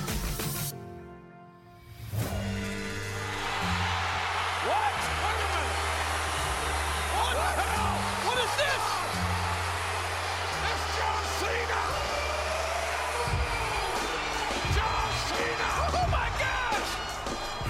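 After a brief hush, a huge wrestling arena crowd erupts into a sustained, loud roar with scattered cheers and whistles, a deep thumping beat pulsing underneath throughout.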